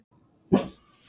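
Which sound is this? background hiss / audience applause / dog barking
dog barking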